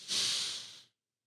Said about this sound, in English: Breathing in again.